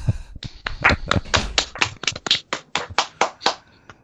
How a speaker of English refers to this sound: A round of applause.